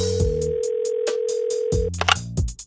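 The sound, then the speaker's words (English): Ringback tone of an outgoing phone call placed live on air during the show the Bunt Live: a steady, mid-pitched buzzing tone holding for nearly two seconds, then cutting off, with a rhythmic beat of music playing underneath throughout. “You want to call his ass right now? Let's call his ass right now.”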